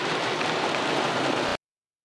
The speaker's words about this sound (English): I sat in the rain as I began to think of concepts for this project. I listened to it fall on either side of the car.